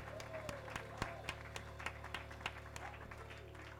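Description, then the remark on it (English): An audience claps steadily and unevenly to give God praise, many hands sounding together at moderate volume, with sharper individual claps standing out over a continuous low hum. “Somebody clap your hands and give God praise one more time.”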